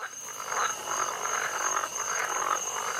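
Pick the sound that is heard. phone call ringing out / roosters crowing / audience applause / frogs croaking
frogs croaking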